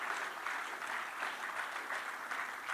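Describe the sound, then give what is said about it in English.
A crowd applauds steadily for a man who has stood to his feet, a dense, continuous patter of many hands clapping at moderate volume for a few seconds, with no voices standing out. “You can clap for him.”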